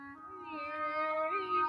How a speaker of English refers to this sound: Sounds like sounds like cats or something.